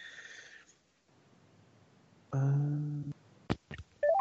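Electronic telephone tones from adding a caller: a short steady beep, a pause, a longer low buzzing tone, two sharp clicks, then a quick rising chime. No one speaks.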